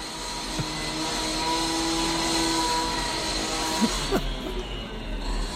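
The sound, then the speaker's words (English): Street construction drilling in the Soho area of London makes a steady, loud mechanical roar with a droning whine running through it, broken only by a couple of brief knocks toward the end. No one speaks. “So this, for the first time ever, a clip of drilling from London Soho area where Mark likes to go and have a projection every now and again.”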